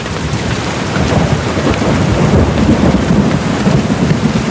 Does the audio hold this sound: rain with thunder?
yes